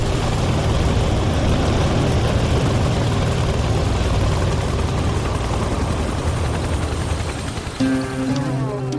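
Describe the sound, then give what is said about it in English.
A smoking, flame-belching Soviet Mi-8 twin-turbine helicopter at a military base on the outskirts of Yerevan: its heavy turbine engines roar loud in a steady, dense drone with deep rumble, shifting near the end to a more tonal, whining pitch. No one speaks. “A smoking, flame-belching, banged-up-looking Soviet Mi-8 twin-turbine chopper whose appearance, prior to boarding, does not fill me with confidence.”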